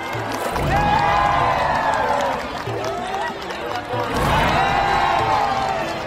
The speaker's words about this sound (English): Glowing balls of orange seem to rise out of the water into the air before disappearing into the sky. Each fireball is greeted with loud cheers and wild clapping.